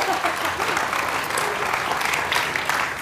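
An audience claps in a steady, dense round of applause lasting a few seconds for a guest, a manager at Peaches and Cream. The many overlapping hand claps form a bright, even wash of noise with no talking over it.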